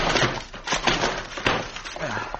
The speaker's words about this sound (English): I'll go in and look around. Door's locked. I'll bust it in.